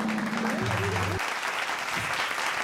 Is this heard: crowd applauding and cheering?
yes